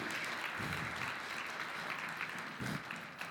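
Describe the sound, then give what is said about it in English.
An audience claps hands to give the Lord a hand, a dense, steady burst of applause, many overlapping claps blending into a continuous loud crackle that holds for several seconds with no voices over it. “The way you're clapping, some of you have really been burnt, eh?”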